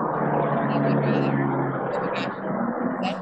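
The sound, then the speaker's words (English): A loud, steady airplane drone fills the whole stretch, a broad roar with a low humming tone, as if passing overhead, with faint voices mixed in beneath it. “You know, it's a really inconvenient time for a plane to just go flying.”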